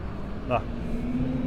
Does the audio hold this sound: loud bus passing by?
yes